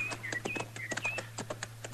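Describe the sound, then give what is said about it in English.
Horse hooves clip-clop in a steady, fairly quick rhythm of sharp knocks, moderately loud, while faint bird chirps and a low hum sit in the background. No one speaks. “We better just water our horses and ride on”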